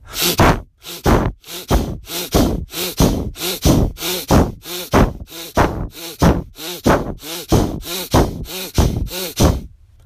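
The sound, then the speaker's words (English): Rapid, forceful breathing in and out through the nose as part of an exercise, done while pulling the arms down from overhead with closed fists as in an intense pull-up. A steady run of about sixteen loud huffing bursts over ten seconds, with no talking. “And then the second piece is to add breathing in and out of your nose. So I'll model it.”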